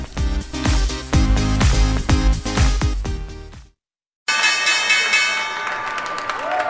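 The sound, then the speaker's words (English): The New York Stock Exchange opening bell rings steadily on a Wednesday over loud applause and crowd noise, after a brief burst of rhythmic music and a moment of silence. “That's the opening bell over there at the New York Stock Exchange.”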